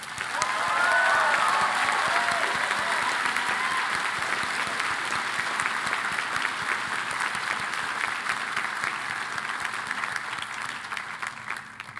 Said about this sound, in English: join me in thanking our amazing staff, whose daily efforts and impressive skills keep this college running smoothly, who look after our students, this campus, and one another. It is an honor to serve alongside you. A round of applause for our staff.